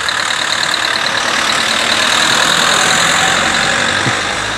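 A car engine hums steadily and fairly loudly, swelling slightly midway as the vehicle passes by, with broad road noise throughout and no voices.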